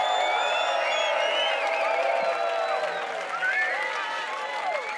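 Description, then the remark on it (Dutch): A large crowd at the Loveland 2017 festival cheers and applauds steadily for Hernan Cattaneo for several seconds, with high whistles and whoops rising and sliding above a dense, continuous wash of clapping and shouting. “En jullie weten wel, mag ik alsjeblieft een groot applaus voor Mr.”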